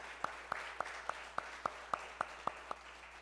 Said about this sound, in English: If you are a veteran and served this country and sacrificed, if you would please rise so that we can give you recognition for that. Let's give these men and women a round of applause for their sacrifice for us.